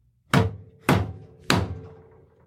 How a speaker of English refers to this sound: I don't really know why I'm banging on the... I mean, it just kind of... Table was called for, seems, but it was called seems for. Seems right.